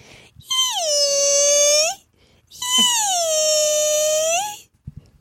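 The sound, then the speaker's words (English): A voice imitates the whale from the film Free Willy with two long, high, wailing tones, each held for about two seconds. The pitch dips slightly and rises again, and a short pause separates them. “I can also do the whale from Free Willy.”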